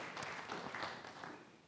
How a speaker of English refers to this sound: Okay, great. You can sit down, guys. Give him a round of applause, would you?